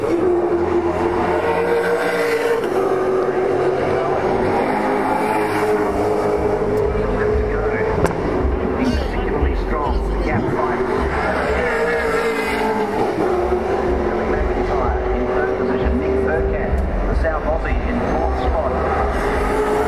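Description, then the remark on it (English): Loud race car engines roar continuously for the whole stretch at the Clipsal race in lovely low golden sunshine, their pitch climbing and dipping as cars accelerate and pass along the circuit, with several engines overlapping. “Perhaps, really, it just sounds like the Noonan engine is not working that hard.”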